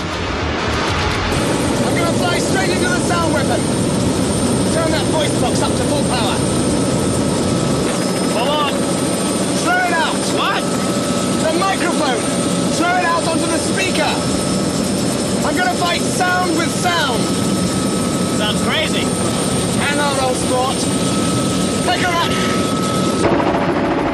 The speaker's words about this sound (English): Biggles lands a helicopter back at the, I think it's like a farmstead where they go to.